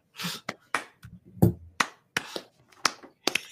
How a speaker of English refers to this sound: I feel like there had to be a slow clap. Like somebody just.